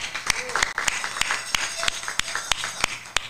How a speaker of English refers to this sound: Now it is time for the Nguza Sabo, our seven principles. Let's give a hand clap for that.